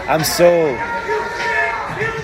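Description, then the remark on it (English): A rowdy crowd right next to the speakers, overlapping voices chattering and calling out, with a few raised, rising shouts cutting through the steady murmur of talk. “We got a rowdy crowd next to us, folks.”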